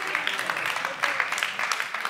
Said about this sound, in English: Yeah, I'll get two claps there.